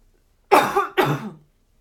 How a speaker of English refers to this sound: Oh, stoner cough. Hold on.